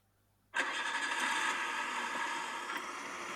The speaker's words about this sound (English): So, I'm pretty sure you can hear that. That is a car. Yep, that's a car.